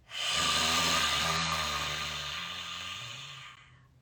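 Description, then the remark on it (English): A single long, forceful lion's breath exhale, done in a breathing exercise after a deep breath in through the nose: a loud, breathy rush of air with a low, growling rumble underneath, lasting about three seconds before tapering off into quiet. “Okay, and then whenever you're ready, deep breath in through the nose. Lion's breath out.”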